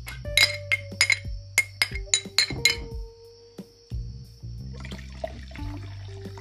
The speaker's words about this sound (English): Cheers. I need to fill my glass up, pardon me.